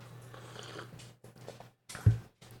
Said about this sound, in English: So hold on a sec. Let me get a sip of coffee.